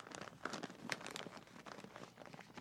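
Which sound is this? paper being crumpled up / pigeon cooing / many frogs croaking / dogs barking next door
paper being crumpled up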